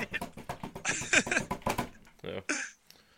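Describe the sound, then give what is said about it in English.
A rapid run of crisp clicks like someone typing fast on a keyboard, made by a voice imitating keystrokes as fake typing for an internet search, trailing off into a few breathy, hissy bursts. “I have to do my Stephen Colbert fake typing here”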